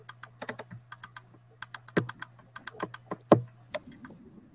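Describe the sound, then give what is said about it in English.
Rapid, uneven clatter of keys being struck on a computer keyboard, dozens of sharp clicks in quick bursts with a steady low hum underneath and no one speaking. “This is me typing.”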